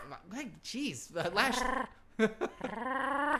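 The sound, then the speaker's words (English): A man's voice imitates a dog, letting out a quick run of loud barks and yelping whines that swoop up and down in pitch, with a growly edge and no other sounds. “You hear that bark? Let me hear it again.”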